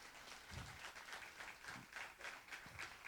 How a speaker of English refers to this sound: Give my little visitor a big round of applause.